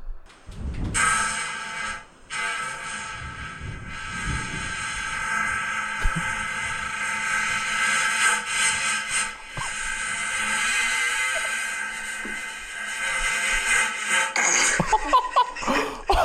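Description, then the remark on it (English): A long, raspy recorded fart, sent in as a submission, stretches over several seconds, broken by brief pauses, while someone struggles to hold back giggles and snorts of laughter. “Scream, fart, say your name.”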